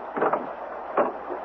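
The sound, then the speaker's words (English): A door knob turns and the unlocked door is opened slowly in the rain: two brief, muffled rattling bursts about a second apart, moderately loud over a steady low hiss, with no voices. “Turn the knob. Do everything slowly. That's it. Open the door.”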